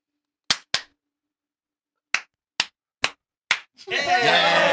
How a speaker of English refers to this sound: I don't know which way you want to go with the claps. I'll start them, but clockwise or counterclockwise. Let's go this way. Okay, counterclockwise. We may end up in a rhythm. Yeah, yeah. Let's see if we can get a good quarter note going. Here we go.